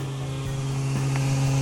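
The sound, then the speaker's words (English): A steady, loud mechanical drone from a vacuum pump truck running its pump as it loads, a low humming engine tone that holds constant throughout with faint rattles, no voices. “My pumper make a certain tune when I'm getting full.”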